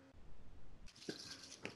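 A brief, quiet pour of tequila into a cupped hand, followed by soft wet squishing as the palms rub together to diffuse it, with a couple of small drippy clicks.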